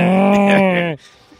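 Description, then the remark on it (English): A person's voice imitates a cow's moo: one loud, sustained, buzzy low-pitched call lasting about a second, cutting off abruptly into near silence. “I used to be able to do a good cow.”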